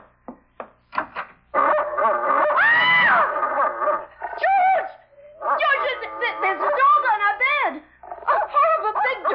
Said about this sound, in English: It's only a dog, for Pete's sake. He's not going to hurt you.